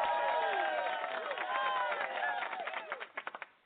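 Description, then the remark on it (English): A crowd cheers and applauds loudly to welcome a guest being introduced, a dense wash of voices and clapping that thins out into a handful of sharp, separate claps at the end. “So we're going to go ahead and get the applause going for him.”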